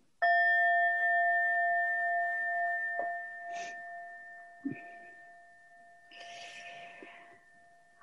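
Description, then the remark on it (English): A single meditation bell struck once to begin a group meditation, its clear, steady tone ringing out and fading slowly over several seconds, with faint rustling and small movements beneath it. “So I'm going to ring the bell to center us all.”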